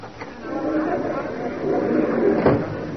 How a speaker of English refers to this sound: Uh-oh, here's the stage door. Come on in, kids.